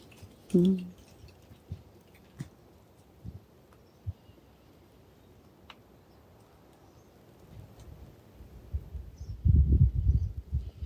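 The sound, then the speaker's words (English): Lake ice shifting as wind-driven waves move below it: scattered soft ticks and knocks across a quiet background, an early low creak, then a cluster of deeper, louder thumps and groans near the end, with no voices. “Winds creating waves and the waves moving below the ice.”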